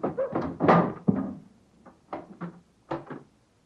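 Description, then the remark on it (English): Firm knocks on a wooden door, a quick cluster of heavy thuds followed after a short pause by a few more spaced raps, fairly loud with no talking. “Knock again, old fellow, will you?”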